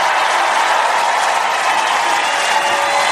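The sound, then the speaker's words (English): Loud, sustained applause from a large crowd as Mike Lindell is introduced, a dense wash of clapping that stays steady and full throughout without any voices breaking through. “And every time I introduce him, he gets a tremendous applause.”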